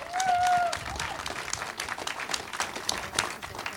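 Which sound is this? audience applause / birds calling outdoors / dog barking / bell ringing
audience applause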